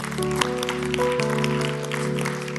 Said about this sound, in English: If you will, give God a big hand clap tonight.